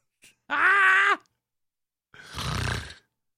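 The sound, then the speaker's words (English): A person imitates a monkey with two loud vocal bursts: first a sustained, tonal hooting call, then after a pause a rougher, breathy grunting shriek. No words are spoken. “Once people see you making monkey noises at a Hispanic black person who has already accused you of racism, it isn't going to end well for you here.”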